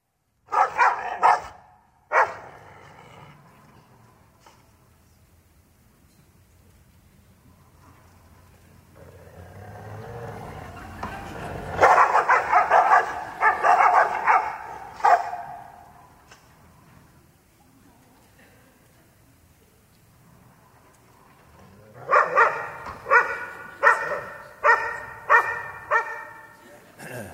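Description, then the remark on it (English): Two dogs in a 30-second video bark in loud bursts, first a quick flurry, then a longer stretch of repeated barks, and finally a rapid rhythmic volley, with quieter rumbling and a pause between. “And so I want to just invite you to watch this 30-second video, and I'm going to invite you afterwards to reflect with me on what is the big idea or the big lesson we can learn from these two dogs.”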